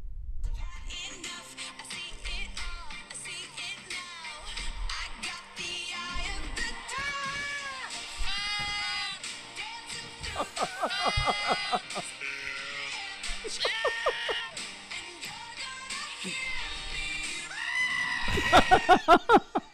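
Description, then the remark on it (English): Goats scream and bleat over and over, loud, wavering, almost human cries following one another closely, with a low thumping beat underneath and a harsh burst near the end. “Do you know who also likes screaming goats?”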